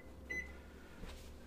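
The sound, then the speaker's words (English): A single short, high electronic beep from an oven timer being set for 90 minutes while a cake bakes in the oven rings out over a steady low hum, followed a moment later by a faint soft click. “I'm going to set my timer for 90 minutes.”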